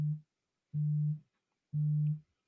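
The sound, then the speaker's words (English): A phone vibrates in three steady buzzing pulses, each about half a second long with short silent gaps between them. The low hum is heard with no talking. “Hey, your shit is vibrating, bro.”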